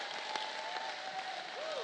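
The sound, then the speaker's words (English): An audience clapping hands in praise to Jesus, a dense, steady wash of many overlapping claps at even loudness, with a faint sustained tone and a brief rising-falling pitch sweep near the end. “If you believe it in here, clap those hands.”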